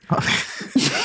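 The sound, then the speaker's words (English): A single sneeze: a short voiced intake followed by a sharp, breathy burst, loud and abrupt, with no talking around it. “Bless you.”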